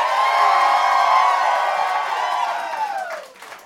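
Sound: audience cheering and clapping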